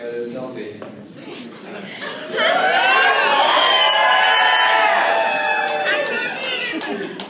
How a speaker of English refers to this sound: Speaking of messed up crowds, here's the audio of a noisy and fun bunch of people in Lincoln, Nebraska.